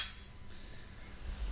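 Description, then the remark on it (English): A single quick clink of beer glasses in a toast rings out at the very start, a bright chime that fades over half a second, leaving quiet room tone with a low rumble. “Yeah, so cheers, Sam. Cheers.”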